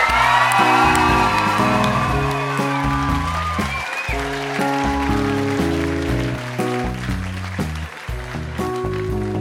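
An audience claps and cheers, with a few high whoops rising over the crowd, while steady music with a bouncing bass line plays loudly underneath throughout.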